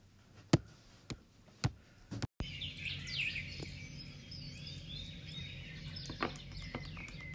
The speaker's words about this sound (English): Does this sound intrigue you? Are you a bird lover?